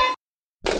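A short, harsh electronic buzz with a steady tone cuts off abruptly, followed by a brief silence and then a loud burst of rough, noisy sound. No one speaks.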